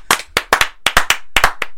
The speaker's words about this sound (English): I think we start this podcast by clapping. So keep it. Yeah!